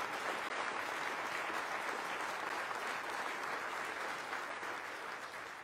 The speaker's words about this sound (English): Our police officers continue to do outstanding work, and their efforts are paying off. Let's give our men and women of the Milwaukee Police Department a round of applause.